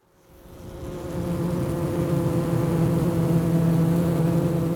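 A dense, steady drone of many honeybees buzzing around a hive frame, swelling in over the first second and then holding at a constant hum with no voices.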